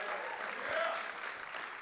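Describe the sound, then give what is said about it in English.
A crowd applauds steadily with scattered cheers and whoops for a person asked to hand out Bibles, a dense, even wash of clapping that holds at a constant level for the whole short stretch. “That's a big cheer.”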